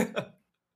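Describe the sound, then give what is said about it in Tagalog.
Two quick, harsh coughs in close succession, fairly soft, ending abruptly and followed by silence. “Sorry na, inuubo ako.”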